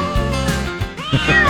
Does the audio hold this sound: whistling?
no